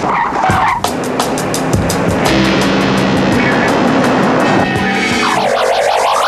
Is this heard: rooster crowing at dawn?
no